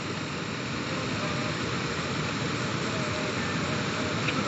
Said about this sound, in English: Listen to the sound of the water as it comes down.